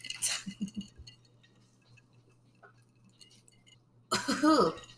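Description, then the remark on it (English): A bright clink of glasses of a cocktail made with Strega liqueur and lemonade touching at the start, its ring fading through a quiet pause before a burst of voices comes in near the end. “Let's go ahead and cheers.”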